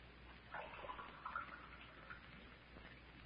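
Water is poured into a glass as a drink for someone, in one short, gurgling stream that rises and then trails off, fairly quiet against a soft background hiss.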